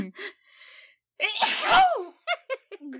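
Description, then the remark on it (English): A single loud sneeze bursts out after a short breathy build-up, followed by a few quick gasping breaths and small vocal sounds. “I promise you I'm going to sneeze as we.”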